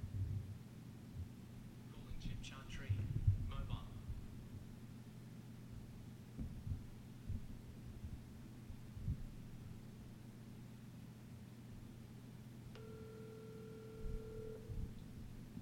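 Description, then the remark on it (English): A single two-second burst of an outgoing phone call's ringing tone, calling Chip Chantry, a steady electronic purr heard near the end over a constant low hum. Brief muffled sounds come earlier. “Call Chip Chantry.”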